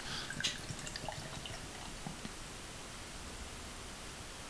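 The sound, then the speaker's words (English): Beer, a Frosty Imperial Stout with Vanilla from a can, pours into a glass with a soft, steady hiss, a few faint drips and fizzy crackles standing out near the start, quiet with no voices. “Nice pour, nice execution.”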